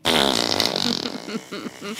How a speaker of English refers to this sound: I just felt like doing that. Sometimes you need a good fart noise.